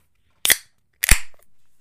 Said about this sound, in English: So I did happen to grab a can, and let's crack it open now and talk about it.